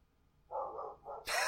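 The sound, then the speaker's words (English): A big female dog lets out two deep, drawn-out barks, and a sudden burst of hissy noise cuts in right after the second one. “That sounds like the big dog.”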